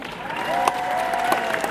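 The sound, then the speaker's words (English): Steady crowd applause for actor Michael Culver fills the whole clip, dense and even, with a sustained whistle or cheer riding over it and a few sharper claps popping out. “Please give a massive round of applause to the brilliant Mr. Michael Culver.”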